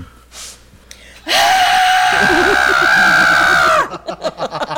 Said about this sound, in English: So it probably sounds like someone's trying to escape right now out of their own being. It doesn't. Or in pain? It doesn't. This is an utter wail of despair.